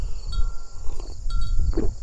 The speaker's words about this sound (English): So, there. Now, that front of wind has moved through. That's kind of cool. You can hear the wind chimes going. And it's kind of cool when you have that front of wind come, and then after that it settles down.